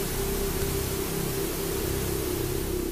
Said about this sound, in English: Well, the TV starts to change channels and out of nowhere, it goes straight to static.